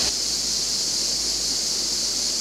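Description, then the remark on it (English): Water in a river rushes and splashes in a steady, unbroken hiss with no distinct individual splashes, holding an even loudness throughout with no voices, on a very hot day as someone remembers their baptism in the river. “And just to give you a sense of what that feels like and looks like, and because it's a very hot day, I'm going to remember my baptism in this river.”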